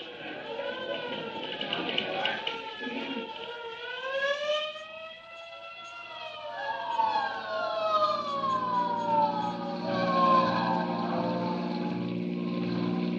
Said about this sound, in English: Say, there's a hook and ladder on the street right now. It must have turned the another alarm.